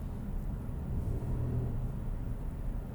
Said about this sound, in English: You hear me revving my engine? Trying to get my... Come on, double yellow, go away.